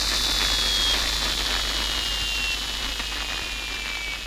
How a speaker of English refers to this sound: I'm going to boost the levels here to amplify the interfering signal. Whoa! Was that you? Turn it down! That wasn't you! I didn't do anything! It's growing!